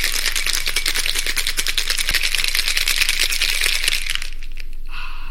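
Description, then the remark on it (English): A cocktail shaker rattles hard and fast with ice while a dragon's heart cocktail is shaken up in a kitchen, a dense rhythmic clatter lasting about four seconds before it stops, followed by a brief quiet high hiss. “Well, I think it's high time for us to have a cocktail, so let us dash into the poisonous cabinet kitchen and shake up a storm, so we'll see you in a minute.”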